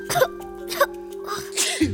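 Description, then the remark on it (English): A couple of short breathy bursts lead into a sharp sneeze near the end, fairly loud against a steady low background hum. “Bless you, and gross!”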